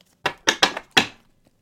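A deck of cards being shuffled: four quick, crisp papery bursts in a loose rhythm, each snapping in sharply and fading fast, with no voices.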